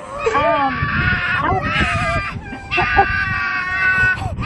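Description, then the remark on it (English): Foxes calling: shrill, wavering, screechy yowls that overlap and run almost continuously, several cries layered with rising and falling pitch, fairly loud throughout with no talking. “Oh, here's foxes. Let's hear them.”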